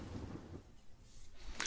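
A brief thunder sound effect: a low rumble fades out, followed by a sharp, sudden crack at the end. It's fairly quiet overall, with no voices.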